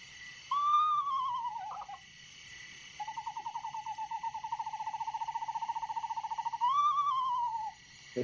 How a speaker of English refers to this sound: Okay, that's your screech owl, I always think it sounds even though they're close by. I've had them in the backyard. And they always seem to sound far away to me, even if I'm like 6 feet away from them.